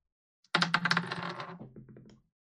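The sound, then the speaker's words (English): Dice are rolled onto a hard table for a space combat initiative roll, clattering in a quick burst of sharp clicks, then rattling and tumbling more softly for a second or so before settling on an 8. Fairly loud, with no voices. “That's an 8 on the dice.”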